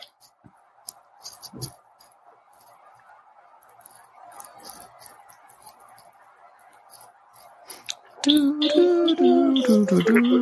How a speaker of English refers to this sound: Yep, it's typing.